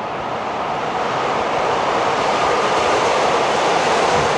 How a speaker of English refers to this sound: The Brooklyn Bridge, 7 a.m. Rush hour, the subway.